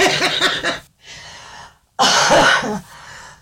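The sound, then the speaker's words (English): A sick person coughs in two harsh bursts separated by a brief pause, each followed by a softer raspy trailing breath, loud, with no talking. “Excuse me, that's the sick cough still.”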